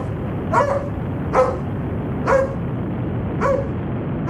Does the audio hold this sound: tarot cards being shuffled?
no